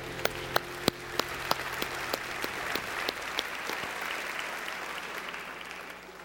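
Audience applause: a few sharp, evenly spaced claps stand out at first, then merge into a steady, dense patter of clapping that holds at a moderate level to the end.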